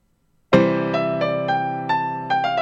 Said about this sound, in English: Yes, it's a piano. Piano, number six.